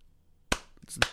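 Two sharp hand claps about half a second apart, made as cues to line up and sync video, each a crisp, bright smack with a quick decay, over otherwise quiet background and no talking.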